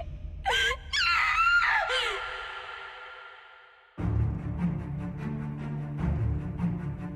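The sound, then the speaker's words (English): A loud, high-pitched scream wavers and swoops for about two seconds, trailing off into a fading wail, followed by a low droning musical swell. “You'll do what? Scream?”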